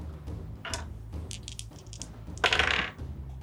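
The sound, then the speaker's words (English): Two sets of dice rattle and clatter onto a hard surface during a tabletop role-playing game attack roll, a series of quick clicks followed by a louder tumbling burst near the end, with a low hum underneath and no talking. “Alright, I got a 16 and a 17. Both hit. Cool. Having 2 sets of dice makes this way easier.”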